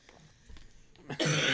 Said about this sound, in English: Excuse me. Oh, my gosh. Still coughing.